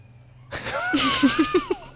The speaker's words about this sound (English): I don't know if the mic picked up the siren, but it was nice timing. They're coming for me because I'm lying.